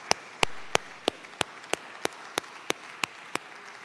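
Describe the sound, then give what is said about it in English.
Applause from an audience for student minister Ismail Muhammad after a Father's Day address: a steady wash of clapping with one set of sharp, evenly spaced claps ringing out above it at a brisk, regular beat. No one speaks. “Let us give student minister Ismail Muhammad a well-deserved round of applause.”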